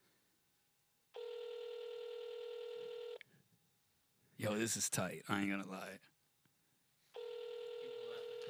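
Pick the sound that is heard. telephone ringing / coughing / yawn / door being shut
telephone ringing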